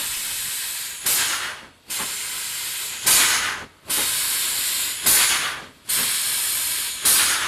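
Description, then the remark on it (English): A Waldorf Pulse synthesizer's bright, spray-can-like hiss, edited in Audacity, runs steadily, swelling into sharper bursts roughly every two seconds, with brief dips between them. It is fairly loud, and there is no talking. “Anyway, as far as that Waldorf goes, sounds recorded from Waldorf Pulse Synthesizer and edited in Audacity.”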